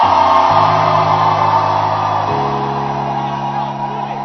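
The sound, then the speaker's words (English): A church audience shouting and whooping together, a loud, sustained roar of many people raising their voices at once, with steady held tones underneath throughout. “Is there anybody here who has not heard a shout like this before in church?”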